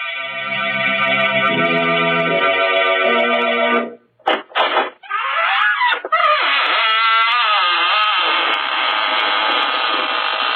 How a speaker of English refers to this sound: Good evening, friends of the Inner Sanctum. This is your host, Raymond, inviting you in through the squeaking door.